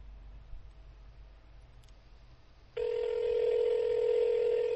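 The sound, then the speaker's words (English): A telephone tone sounds as a number is dialed: a loud, steady electronic beep lasting about two seconds, following a stretch of quiet background hiss, with no one talking. “Pick up the phone”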